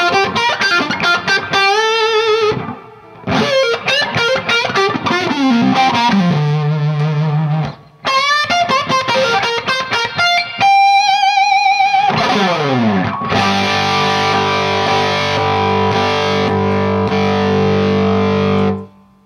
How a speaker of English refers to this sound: So this is what he came up with, and it's a germanium full frequency boost, and it's just awesome. It's probably the most sustain of any pedal I've ever heard. It's just outrageous.